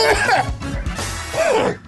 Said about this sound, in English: I'm going to cough.